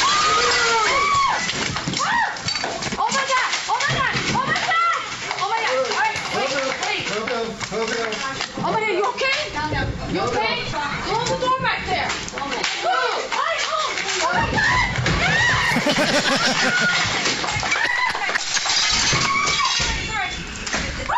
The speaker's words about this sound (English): Here's a deer crashing through the window of a hair salon. Oh!